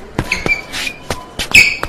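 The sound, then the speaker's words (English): Sneakers squeak sharply on a basketball court, a couple of high, brief chirps mixed with the irregular thuds of a ball bouncing, no voices. “Squeaking of the feet. The squeaking is so good.”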